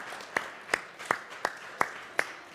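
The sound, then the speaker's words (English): Crowd clapping as children clap to thank their parents, with some adults joining in: one prominent set of sharp, steady claps, about seven evenly spaced beats, over a soft wash of scattered clapping from children and adults. No voices stand out. “I saw some of you adults clapping.”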